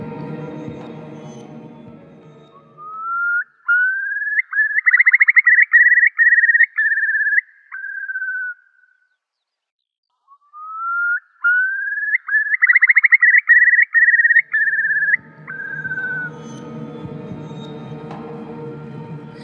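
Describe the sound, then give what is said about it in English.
A curlew, a bird about the size of a female pheasant with mottled brown and grey feathers and a long down-curved bill, calls twice, each a long, bubbling whistle that rises, trills and fades away. A short pause separates the two calls, with a low background rumble before and after. “Curlews are attractive birds, about the same size as a female pheasant, with mottled brown and grey feathers, long bluish legs, and a distinctive long down-curved bill, perfect for hunting for prey in the mud.”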